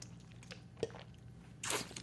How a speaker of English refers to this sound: This is my water right here. I'm going to take a sip real quick.